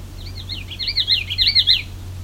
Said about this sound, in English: This was a common Yellowthroat.